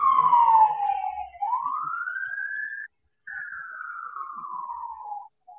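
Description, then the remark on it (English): An emergency vehicle siren wails loudly on a busy main street, its tone sliding down, climbing back up, then gliding slowly down again over a faint low traffic rumble, with no talking. “I'm guessing that those sirens are no, actually they're high. That's me.”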